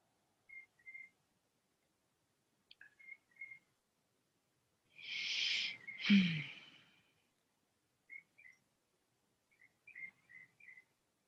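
A small bird sings in brief, high chirping phrases repeated every second or two, quiet, broken midway by a loud, breathy exhale.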